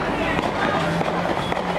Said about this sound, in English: That's gunfire. All right. Just a hail of gunfire just now.